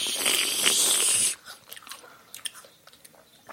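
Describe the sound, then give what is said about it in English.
A loud crunching bite into a slightly brown apple, a bright crackly burst for over a second, followed by softer wet chewing crunches in an irregular rhythm. “I'm going to pick up my going slightly brown apple while you finish this”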